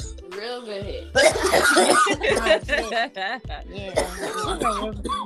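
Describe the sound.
A loud fit of harsh coughing after taking a hit of smoke comes in rough bursts mixed with throaty, voiced sputters and wheezy exhales, the person still exhaling smoke while coughing.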